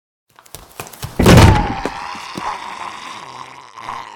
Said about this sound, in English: Jaime throws himself backwards in fright as Septa Unella rushes at the door, snarling and biting at the air.